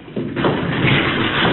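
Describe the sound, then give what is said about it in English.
A heavy solid lead door with a lever grinds open with a low, sustained rumbling scrape that swells after a brief thud and keeps going, loud, with no voices. “No, it's a heavy lead door. There's a lever.”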